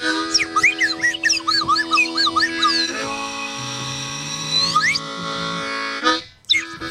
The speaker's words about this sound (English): Slide whistle solo!